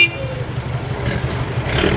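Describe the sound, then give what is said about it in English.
A loud Hindustan Motors Ambassador car engine in India rumbles steadily, a coarse, rattling drone that swells slightly toward the end, with no voices. “The Hindustan Motors Ambassador was so noisy that kids playing on the street could safely hear it blocks away.”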